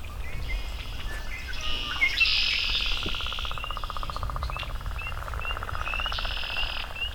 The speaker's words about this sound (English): Some male singing. There's another male landing right above me. As you can hear, there's red-winged blackbirds everywhere here.